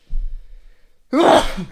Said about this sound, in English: Why would I have to sneeze?